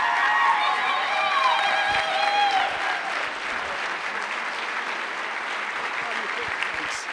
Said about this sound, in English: Give him a warm round of applause as he makes his way up.